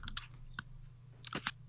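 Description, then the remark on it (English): A handful of sharp computer keyboard keystrokes tap out in irregular little bursts, fairly quiet, over a steady low electrical hum with no one talking. “Mind the typing.”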